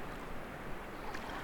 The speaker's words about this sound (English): And the noises of the water as well. Because you can't hear anything else, can you? No. Just the waterfalls around us, and that's about it.